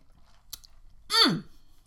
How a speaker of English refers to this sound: I'm sipping on it. Let me take another sip real quick.